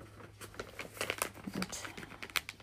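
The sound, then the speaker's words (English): Paper crinkles and crumples in a steady run of sharp, scratchy rustles for a few seconds, with a faint low hum underneath and no voices. “Stupid paper. Go where I want you to go.”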